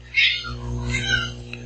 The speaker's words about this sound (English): That's interesting. That's a very expressive cat. He was, especially since he looked like he was spooked by nothing. It sounds like a cat that discovered Jell-O the hard way.